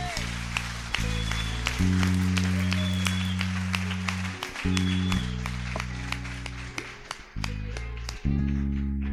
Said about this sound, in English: Shall we appreciate him with a clap, please?